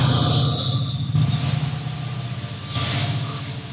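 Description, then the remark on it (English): A train passes on tracks about 30 feet from an office window in Brainerd, Minnesota: a steady, loud low roar with rhythmic clattering, wheels squeaking on the tracks and a brief higher hiss layered over the continuous mechanical noise. “For those of you podcast listeners that don't know, our office here in Minnesota, in Brainerd, Minnesota, is literally, my window is probably 30 feet from the train track.”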